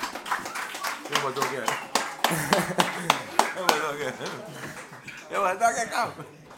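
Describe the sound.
Applause for arriving guests: a scattering of sharp, irregular hand claps that rise and fall in bursts, with several people talking and laughing over them throughout.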